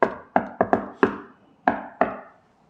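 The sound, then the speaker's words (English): Seven crisp knocks on a wooden surface, played as a quick five-knock rhythm, a short pause, then two final knocks. Each one rings briefly and is fairly loud, with no voices. “So I just called it Knock Knock. But have you ever heard that noise before?”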